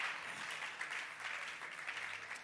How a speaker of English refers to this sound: Oh, clap your hands for them.